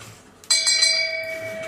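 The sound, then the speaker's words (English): A hand bell, rung by Septa Unella while following Cersei, is struck once, giving a bright metallic clang that rings on with shimmering overtones and slowly fades. It is clear, with no talking. “Yeah, she was a lady following Cersei after all that, ringing the bell, making her confess.”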